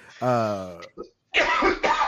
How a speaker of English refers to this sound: What the fuck's going on with this guy up here? He got the TB all of a sudden. Just coughing. Yeah, I got the TB up there.